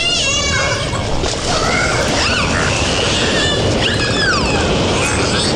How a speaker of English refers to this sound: Yeah, dolphins having sex right there, apparently.